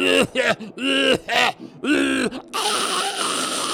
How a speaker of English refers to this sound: Why are you coughing and what are you doing with your throat?